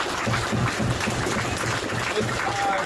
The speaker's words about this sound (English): So thank you guys again. Again, big round of applause for everybody.